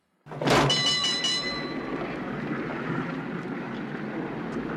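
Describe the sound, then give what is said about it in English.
A streetcar's bell, in a scene from the 1988 film Who Framed Roger Rabbit set in 1940s Los Angeles, clangs sharply and rings out with bright, decaying overtones, then the steady rolling rumble of the car on its rails continues underneath. No one speaks. “In this scene, a group of kids is talking to the main character, a detective, as he's riding a streetcar.”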